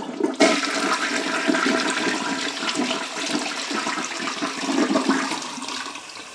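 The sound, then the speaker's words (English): A toilet at the Boonslick Lodge flushes, starting with a sudden click and then a steady, loud rush of swirling water that continues without voices for several seconds. “Hello, ladies and gentlemen, here is the toilet flushing at the Boonslick Lodge.”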